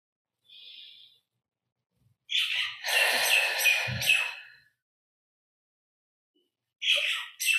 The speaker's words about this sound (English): Feel gratitude for the lovely birds.